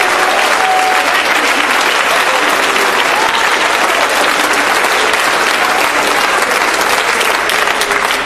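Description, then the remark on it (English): A church audience claps their hands to thank God in sustained applause, a dense, steady crackle of many hands that stays loud throughout, with faint voices mixed in beneath it. “Oh, you ought to clap your hands and thank God for the heroes that surround us.”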